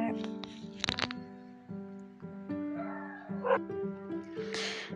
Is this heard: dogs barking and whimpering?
yes